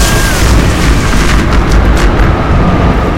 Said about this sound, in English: Her lips parted as though she meant to speak, but when she did, only a deafening clap of thunder came from them.